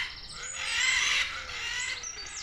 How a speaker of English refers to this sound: Okay, when you come out of my house and ride into the zoo, the first thing you'll hear, especially when it's not too dark, you'll hear the macaws, these beautiful parrots making this incredible squawking sound, and they're very loud.